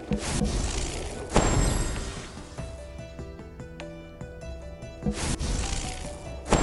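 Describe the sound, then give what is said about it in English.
A magical water effect from a game: rushing, splashy bursts of noise at the start and end, with bright shimmering chime-like tones ringing through the middle, fairly loud throughout. “This is water.”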